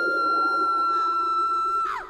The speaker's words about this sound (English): He was interrupted when someone began to scream. It was a wild, powerful sound, a full-throated, unhinged zombie apocalypse scream. It silenced all the conversation.